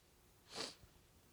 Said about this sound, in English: Sniffles.